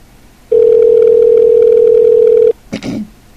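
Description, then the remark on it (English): One long, steady ringback tone on an outgoing phone call, loud, lasting about two seconds, followed by a brief muffled rustle or click as the line goes quiet. “Answer the phone.”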